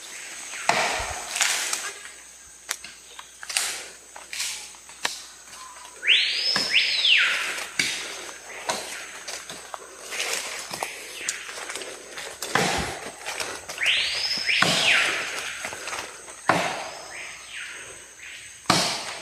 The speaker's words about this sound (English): If you're listening, this man is trying to chop down a tree. Mm-hmm. That repetitive sound in the axe. Well-built axe, though.